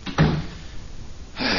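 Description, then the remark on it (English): A door swings shut with a solid thump near the start, followed by a brief quiet hum of the room and a second rustling bump at the end; no one speaks. “Want me to close the door? Yeah, that's a good idea.”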